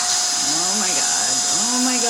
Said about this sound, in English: She grabs the nearest weapon she has, the vacuum.